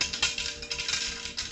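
Nails drop into metal pressure cooker pots in an irregular run of bright, rattling clinks, one spilling over the next at a moderate level, with no voices.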